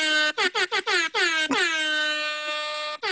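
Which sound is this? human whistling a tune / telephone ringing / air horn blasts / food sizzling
air horn blasts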